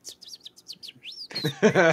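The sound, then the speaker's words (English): A person whistles a quick run of about eight bright, high-pitched bird-like chirps with their mouth, fairly loud, then voices break in over the final stretch. “I don't know if this will come through on the mic, but it's so funny because most people just think there's birds outside, but I'm doing this.”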